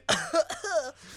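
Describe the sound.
A person imitates a woman coughing after drinking a spicy Bloody Mary: a few short, harsh bursts followed by a longer, voiced, raspy hack, fairly loud and with no other talk.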